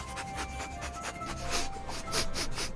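A dog, Dexter, sniffing around a living room in quick, repeated short bursts of breathy noise, growing a little louder toward the end, with no one talking.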